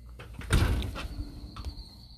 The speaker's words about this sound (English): And you can hear the crickets.